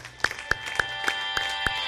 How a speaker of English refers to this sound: Stand to your feet and give the King of Glory a round of applause tonight. He is our God. He is our King.